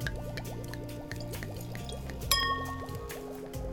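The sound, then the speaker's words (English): Sparkling Nurgel juice pours steadily into a glass with a bubbly, gurgling fill whose pitch slowly rises, broken midway by a single bright clink of glass. “A glass of sparkling Nurgel juice, madame.”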